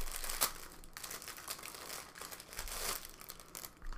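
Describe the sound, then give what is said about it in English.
Plastic packaging crinkles and crackles in a steady, irregular stream for a few seconds, with sharper rustling bursts now and then and no one speaking, while unboxing Kickerland's Goat Yoga Party Game, which holds an inflatable goat and a deck of cards. “So, what you get in the package is you get an inflatable goat that you can blow up.”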